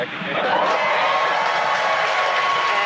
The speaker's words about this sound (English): Confirmed by the loud cheer behind us here at Mission Control Hawthorne.